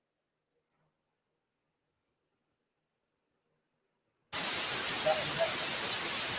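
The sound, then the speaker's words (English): Near silence with two tiny clicks early on, then a loud, steady burst of static interference hiss cuts in abruptly and fills the last two seconds. “No, we're getting a lot of interference here.”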